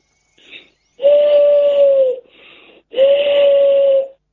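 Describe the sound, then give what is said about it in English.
Two breathy, steady hoots blown gently through both cupped hands, each about a second long with a soft hiss of air around the tone, fairly loud, imitating an owl. “You need both hands, cup them, and blow in it gently.”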